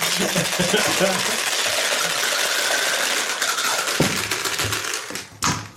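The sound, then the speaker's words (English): A handful of dice rattle and clatter across a hard table, a busy stream of small clicks and knocks over several seconds, ending with a few sharp, louder taps as they settle. “We're back to rolling dice.”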